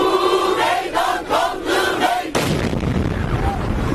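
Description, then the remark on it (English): A crowd at a peace protest beside Ankara train station, Turkey, chants in rhythmic, sung phrases until a single loud bomb blast erupts, leaving a harsh, rumbling wash of noise and commotion. “2 explosions ripped through the crowd beside Ankara train station, at least one believed to be a suicide bomber.”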